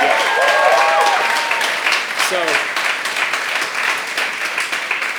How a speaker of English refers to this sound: And I just want to just take a moment for you guys just to give that team a round of applause and thanking them for all that they've done.